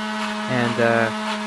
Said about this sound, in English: Again, everything is already in the blender, so I don't have to do anything. Just press the button.